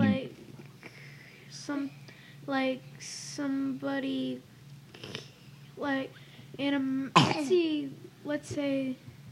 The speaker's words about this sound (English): cough to the side if you're going to cough.